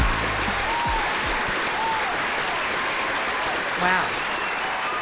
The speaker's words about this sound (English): Wow. It never gets old. We like an applause. Oh, man. Standing up. Applause, if you guys have never had it, it feels really good, even if it's fake. Even a canned applause feels good. Canned applause, whatever.